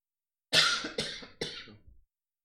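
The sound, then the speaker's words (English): Three quick, dry coughs in a rapid burst, the first the loudest and the next two trailing off. No one speaks around them. “Sorry, I had to cough a little bit.”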